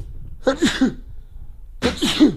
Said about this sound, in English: Excuse me, I'm gonna sneeze.